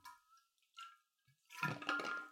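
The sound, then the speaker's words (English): Drinking from a water bottle: a few small squeaky plastic and liquid sounds, then a louder burst of sloshing and gulping near the end. No one speaks. “Need some water? Yeah. Water bottle.”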